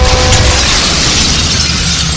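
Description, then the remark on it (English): A loud crash of shattering glass as a creature breaks through the glass of a skyway, a dense burst of breaking and scattering shards that keeps roaring for a couple of seconds with no voices. “The skyway is mostly glass. Oh, and it's outside the glass.”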